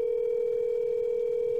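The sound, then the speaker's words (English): A steady, unbroken telephone dial tone while placing a call hums at moderate volume for the whole moment, a single flat pitch with no pauses, beeps or voices. “No, I'm calling her.”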